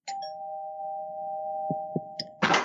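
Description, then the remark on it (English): A doorbell sounds as one steady, mid-pitched electronic tone held for more than two seconds, with a few soft thumps beneath it and a sudden burst of noise at the end. “And then the doorbell rings.”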